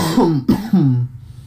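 A person clears their throat into the mic in a few quick, rough bursts, with a short cough mixed in, then silence. Nobody speaks.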